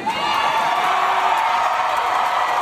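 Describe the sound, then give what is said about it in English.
A large concert audience cheers and whoops in a dense, steady roar, with high shouts rising over the crowd noise for about three seconds, applauding the singer introducing her two-year-old son to drag queens. No one speaks clearly. “Aw, just bask in the applause from the audience of you introducing your two-year-old son to drag queens.”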